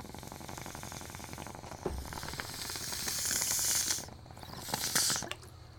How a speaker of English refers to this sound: All right, I gotta take another little pee break. It's the morning. No one else is up.